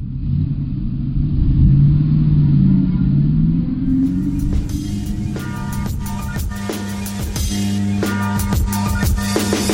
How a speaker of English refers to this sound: Bus is here, bye. Bus is here.